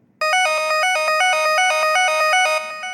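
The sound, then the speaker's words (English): A loud electronic alarm blares from an iPad that receives readings from a blood sugar monitor, a rapid repeating pattern of bright, high-pitched tones that pulses steadily without pause for a few seconds, with no one talking. The alarm is used for waking up. “send them to this iPad, which has a very effective alarm.”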